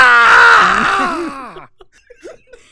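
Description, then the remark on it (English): A voice imitates the unworldly growl of the Manchester, a winged monster, right before it attacks: one loud, strained, wavering cry about a second and a half long, bending up and down in pitch, followed by faint breathy mouth noises. “Right before the Manchester attacks, you hear its unworldly growl.”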